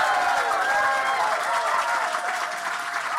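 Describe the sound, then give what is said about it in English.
Sustained, dense applause from a large comedy-show audience giving a standing ovation, loud and steady throughout, with a rising wash of cheering and whistles blended into the clapping. “And that is what a standing ovation sounds like.”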